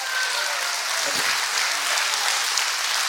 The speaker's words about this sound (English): God said, I am greater than the crisis, and the cross is greater than the conflict. Can you clap your hands for that right now?